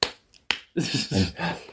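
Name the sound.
clap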